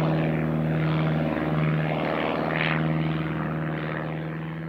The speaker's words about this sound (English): One day, when Gail was working in the fields, he heard a noise in the sky. He looked up and saw planes flying over his head.